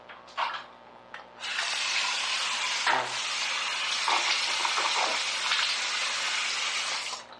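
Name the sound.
shower water running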